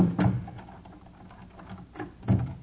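A key turning in a door lock, heard up close: a sharp clunk, a brief pause, then two more quick mechanical clicks near the end, with no one speaking.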